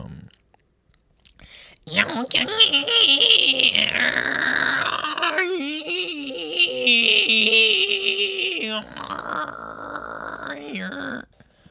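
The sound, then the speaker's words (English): A human voice imitates dolphin chatter for about ten seconds, presented as most of Shakespeare's complete works translated into 'dolphinese': a continuous stream of high, warbling squeaks and wavering whistles with rapid clicks, fairly loud and without any words. “I was creating a dolphin alphabet and translating human poetry to dolphinese.”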